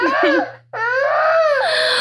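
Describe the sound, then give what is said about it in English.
A baby girl who has been crying hard and is breathing hard cries in short, choppy whimpers, pauses with a sharp catch of breath, then lets out a long, wavering high-pitched wail over a faint steady hum. “Oh, she's like breathing hard. She was crying really hard.”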